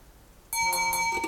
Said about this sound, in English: Oh, sorry, you'll have to excuse me. That is the timer giving me the pre-warning. 1 second, I'm nearly there.